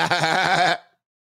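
A single loud goat bleat with a shaky, quavering tone that lasts under a second and then cuts off into silence. No voices.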